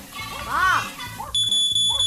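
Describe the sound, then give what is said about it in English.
A smoke alarm suddenly starts blaring partway through as something burns in the kitchen, a loud, piercing high-pitched tone that holds steady to the end, following a child's voice calling out. “I think something's burning in the kitchen.”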